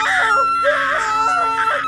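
Two people scream together in terror inside a car, shrill, sustained and loud, their overlapping cries rising and wavering without a break for the full couple of seconds.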